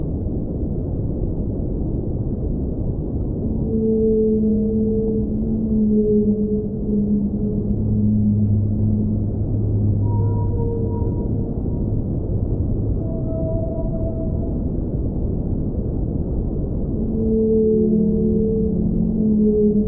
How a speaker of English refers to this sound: this time we're going to hear, as chosen by you, whale songs.